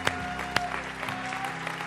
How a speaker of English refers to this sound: And all the people said, amen. Let's clap for Jesus.